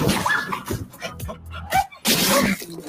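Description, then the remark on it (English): A cartoon dog makes a few short whiny, yipping noises, then lets out one loud, breathy sneeze that bursts out near the end. “Ooh, bless you.”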